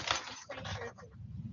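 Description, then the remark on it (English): A bunch of keys jingles in a few quick bursts of light metallic clinking as they are handed over, fairly quiet, over a low room murmur. “I don't know where the charging cable is, but here's my keys if you need to go out to the car.”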